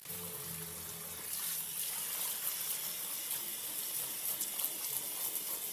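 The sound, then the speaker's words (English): Water pours steadily onto seed-starting soil, a continuous bright hiss with soft splashing as the water soaks right into the soil, lasting the whole stretch with no voices. “But you, if you've ever done that, you're going to see the difference right here, because the water's going to go right in, and I really like that.”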